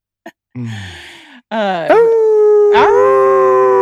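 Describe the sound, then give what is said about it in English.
A dog gives a brief yip and a falling whine, then breaks into long, loud, wavering howls that rise and hold their pitch, with no other sounds around them. “Palm barking? Knew I was palm barking.”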